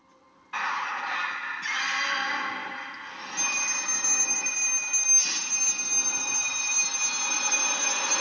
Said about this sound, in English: Y'all ever had house phones that just ring entirely too long? I fucking hate that.